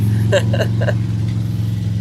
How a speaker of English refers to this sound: And there's the motorbike.